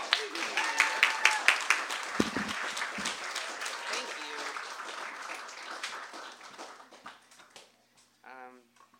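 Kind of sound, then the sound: crowd, audience applause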